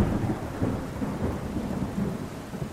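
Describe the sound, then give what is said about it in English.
A steady wash of heavy rain with deep, rolling thunder rumbling underneath from a raging storm at Kennedy Space Center in Florida, a continuous stormy roar with no pauses and no voices. “But a raging storm at Kennedy Space Center in Florida caused NASA to change plans.”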